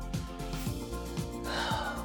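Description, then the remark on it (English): A deep, exaggerated breath drawn in and then pushed out, breathy, with a soft steady tonal bed underneath and no talking. “I did that all dramatic so you could really hear that I'm really breathing.”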